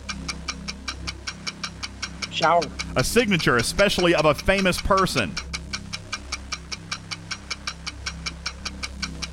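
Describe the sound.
A steady, rapid game clock ticking, timing a 35-second round of the word game Blurt, runs through the whole clip in an even rhythm, with sharp, bright clicks; a voice speaks briefly over the middle while the ticking continues underneath.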